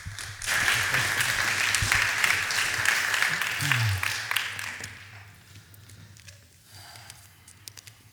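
An audience claps in a dense, steady burst of applause that starts abruptly, holds for several seconds, then thins out and fades to a few scattered claps.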